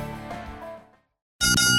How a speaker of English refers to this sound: All right, two bells. That's round two